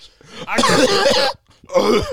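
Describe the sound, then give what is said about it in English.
A person performs a loud, exaggerated, wet-sounding imitation of a tuberculosis cough, a long hacking burst followed by a short pause and another rough cough. “That was a great cough, wasn't it?”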